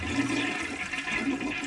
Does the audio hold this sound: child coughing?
no